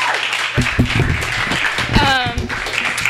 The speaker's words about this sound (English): I think we should give them another round of applause, because that was pretty awesome.